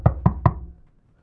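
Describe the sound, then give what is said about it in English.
Three quick, firm knocks on a door in an even rhythm, each a dull thud with a sharp attack, followed by a short fading tail and then quiet. “Ding dong, who's there?”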